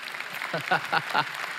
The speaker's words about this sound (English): we can clap for joy if you want to clap for joy. It's great.